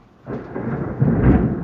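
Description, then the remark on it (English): A deep, rumbling thunderclap during a thunderstorm rolls in suddenly and swells, its low boom building to a heavier peak before fading, with a faint rain hiss beneath and no voices. “Thunderstorms, Shakespeare, and Anarchy”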